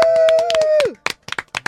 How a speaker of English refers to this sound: Round of applause.